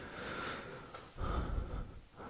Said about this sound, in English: Well, I'm finishing my breathing, but do not interrupt my breathing again.